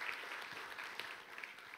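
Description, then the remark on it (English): An audience claps for two volunteers who helped with an illustration, a dense wash of many hands patting at once with no clear rhythm, holding an even, moderate level throughout with no voices standing out. “come on, give them a great big hand clap for helping me out with this illustration.”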